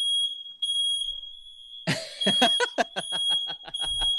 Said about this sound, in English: Smoke alarm because of the hookah. Hold on. Oh, my God.